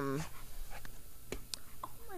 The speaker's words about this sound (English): Oh my gosh, dogs.